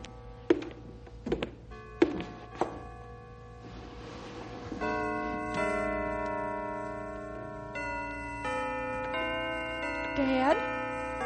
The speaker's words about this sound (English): Dad, the bells are playing. Herman's playing the bells for you. Can you hear them? Yes, Kitty girl. I hear them. They sound so strong and clear.